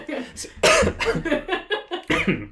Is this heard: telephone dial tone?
no